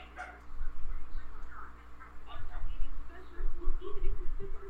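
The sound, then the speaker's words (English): A dog barks repeatedly in short, muffled bursts over a low rumbling background, with indistinct voices mixed in, from a film soundtrack. “Oh, she's gonna kill that dog.”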